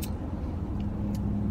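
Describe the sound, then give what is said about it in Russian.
Steady low engine rumble from inside a car moving in a traffic jam, with constant road noise filling the background and a couple of faint brief clicks, no voices. “Если тратить время в пробке, можно и поговорить со своей семьей, да?”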